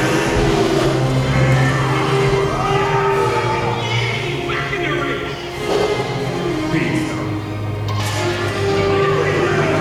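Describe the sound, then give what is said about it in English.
Race cars in a pit stop in a scene from the movie Cars: engines rumble and rev loudly and continuously, with brief tire squeals and skids, layered over voices and busy, crowded background noise. “It is from the movie Cars, and you can see what a pit stop looks like.”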